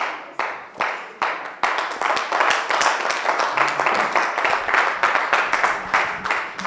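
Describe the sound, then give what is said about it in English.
An audience at the close of a church service claps, beginning with a few scattered, separate claps that quickly swell into dense, steady applause from many hands, loud and sustained to the end. “Some of you are not clapping because you don't like my message.”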